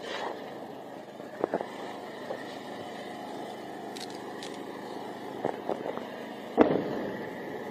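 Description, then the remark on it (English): Several explosions from interceptions of rockets fired from the Gaza Strip pop and crack at irregular intervals over a steady outdoor rumble near the border, the last one the loudest and most booming. “There are going to be some loud explosions. Don't be alarmed. Those are interceptions.”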